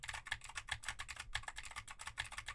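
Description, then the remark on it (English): Rapid typing on a clicky mechanical keyboard with Cherry MX Blue switches, a steady stream of sharp, crisp keystrokes with no talking. “Now I am typing on a keyboard with Cherry MX Blues to see how much of my voice versus how much of the keyboard it picks up.”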